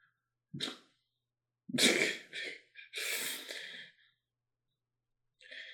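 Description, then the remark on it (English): A run of loud sneezes by actor Val Kilmer in a film scene, two or three forceful bursts with sharp breathy intakes between them, no talking, ending with a brief hiss of breath. “God bless you, Val Kilmer.”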